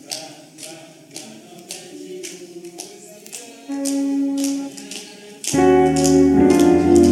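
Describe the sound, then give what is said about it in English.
Steady, rhythmic hand claps keep a brisk beat, sharp and fairly loud, over sustained singing and music that swells louder toward the end. “You are clapping like a Pentecost person.”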